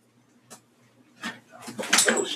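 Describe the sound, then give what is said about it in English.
Scratchy, rasping bursts of a dog's nails clawing at a surface, a couple of isolated scrapes that build into rapid, louder scratching near the end. “Cut those nails, dog.”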